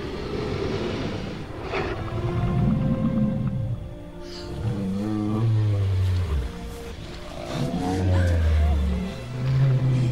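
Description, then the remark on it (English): A Triceratops creature sound effect from a movie, made partly with human sounds and with recordings of animals including a cow: a series of deep, rumbling groans and low bellowing moans, some bending in pitch, loud and continuous with breathy rasps between calls and no talking. “So one of the animals that they used was a cow, but for the breathing of the Triceratops,”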